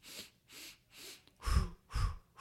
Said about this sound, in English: So breathe in three times. Three times and out you touch your mouth. Exactly. And you do this to start the walk.